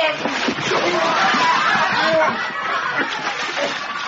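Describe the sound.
Water splashes and sloshes heavily as a man is dunked into water to cool him off, with agitated voices and shouts mixed in, loud, churning for a few seconds.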